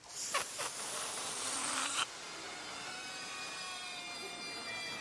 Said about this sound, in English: And now I want you to let the air out of your balloon.